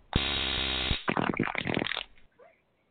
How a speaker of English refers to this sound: I hate that taser, by the way. Because he likes to, like, make it go off as we're driving down the road to a show. And I jump every time.